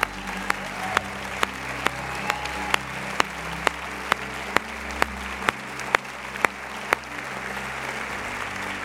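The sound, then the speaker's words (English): A church audience applauds steadily for about nine seconds for people standing up, a dense wash of clapping with a sharp, regular clap cutting through roughly twice per second. No one speaks. “And would you just applaud for them?”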